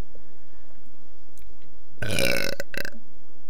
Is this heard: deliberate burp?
yes